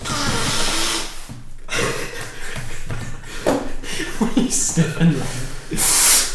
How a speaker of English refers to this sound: Yes, we sniff lines of cocaine before we begin our podcast. I've sniffed so hard, actually I blocked my ear.